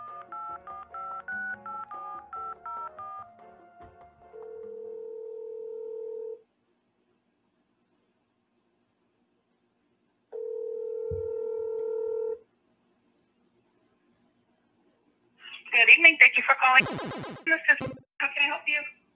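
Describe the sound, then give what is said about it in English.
A rapid run of telephone keypad tones as someone dials an eye care office, followed by two long, steady ringing tones separated by a pause, then a voice answers on the line. “I'm going to call yours right now.”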